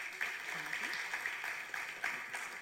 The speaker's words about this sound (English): All right, guys, if you would, give me another round of applause for these amazing seniors and for our awesome youth.